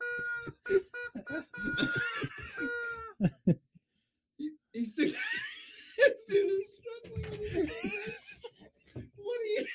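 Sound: chicken clucking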